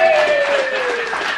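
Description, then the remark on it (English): An audience claps for a volunteer playing Joseph in a Bible reading, in a steady, dense burst of applause that holds at an even, fairly loud level throughout, with a faint sustained voice-like tone running underneath. “And Joseph, round of applause for Joseph.”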